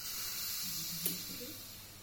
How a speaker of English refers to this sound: In case you missed it, in polite society, this is what a champagne bottle being opened sounds like. Nowadays, you don't pop. It's not the done thing. It's not etiquette. You have a little hiss.